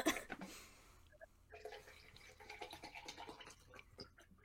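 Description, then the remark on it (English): A plastic water bottle is handled: a sharp knock at the start, then a stretch of quiet crinkling, scraping and rustling with no voices. “That's my water bottle.”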